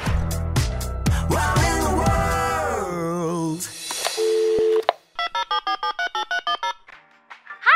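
On the Wow in the World listener call-in line, a single steady, mid-pitched phone recording beep sounds for under a second after a burst of sliding, tuneful tones, followed by a rhythmic run of short electronic telephone tones.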